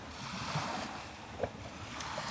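Steady outdoor wash of water by the sea, with gentle waves lapping at the shore and a light breeze, plus one soft knock partway through; no one speaks.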